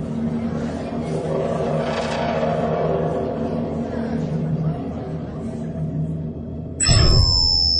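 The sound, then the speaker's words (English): A steady, low engine drone hums for several seconds, then a sudden loud surge kicks in, with high whining tones sweeping downward as an experimental warp engine attached to a plane starts running. “I attached an experimental warp engine to the plane when the captain took me on that tour.”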